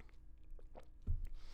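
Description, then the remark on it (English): Someone takes a quiet sip of lemon water, with faint wet mouth clicks followed by a single soft gulp as they swallow. No one speaks. “So while I've been sick, and I'll get into the actual part of the episode, and excuse me, because I'm going to be drinking lemon water.”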